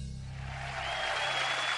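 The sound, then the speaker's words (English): A steady wash of audience applause swells in after a moment and holds at a fairly loud, even level, layered over a low droning hum, with no voices. “Hold your applause.”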